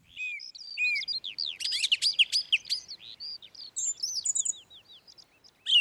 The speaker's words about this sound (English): Bird song. It's the recording of bird song. It's this.